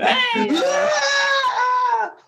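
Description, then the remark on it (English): A person's voice imitates a Wilhelm scream: one loud, drawn-out cry that rises sharply, holds for about two seconds, then trails off, with no other sounds around it. “Like Wilhelm scream.”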